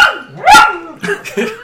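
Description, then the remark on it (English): A dog barks loudly, one long, strained bark followed by two or three shorter, rougher barks in quick succession. No one is talking. “No, that is your dog, and he loves yes, you.”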